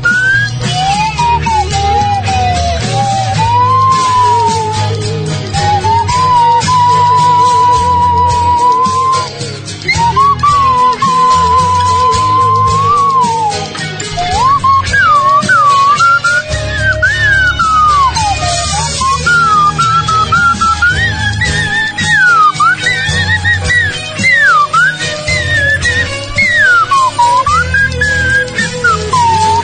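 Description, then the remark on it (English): A slide whistle plays a wavering, gliding melody that swoops up and down between sustained notes, loud over a full band backing throughout. “Still my slide whistle gently weeps.”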